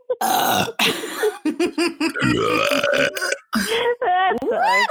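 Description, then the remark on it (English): A loud, drawn-out burp, mixed with rough voiced noises and brief vocal squeals, with people chattering and reacting around it. “You guys, burping is inappropriate on our podcast, and I don't appreciate it.”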